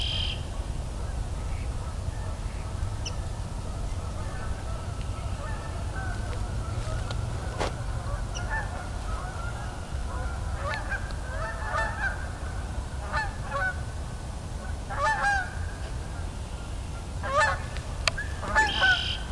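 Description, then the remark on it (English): A handful of stirred-up Canada geese honk repeatedly, the calls growing busier and overlapping toward the end, over a steady low rumble of wind or traffic. “Well, canvas geese are stirred up quite a bit.”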